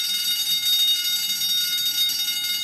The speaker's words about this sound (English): The deafening alarm bell sounded and the whole launch exploded into life.